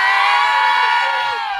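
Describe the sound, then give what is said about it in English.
A crowd in Mobile's Crichton community, gathered over a reported leprechaun sighting, cheers and shouts "yay" together in one loud, sustained burst of high, overlapping voices that holds steady for under two seconds. “Who else in the leprechaun say yay?”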